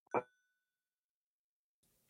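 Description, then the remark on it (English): A single bell is struck once, giving a sharp metallic ding whose ringing tone fades over about a second, followed by near silence and faint hiss. “About halfway through that second day, you hear that familiar bell of the vulture overhead.”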